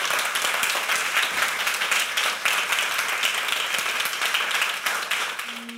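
Steady, dense applause from an audience at a Long Now Foundation talk, many hands clapping at once in a continuous crackling wash that holds level for several seconds before easing slightly at the end.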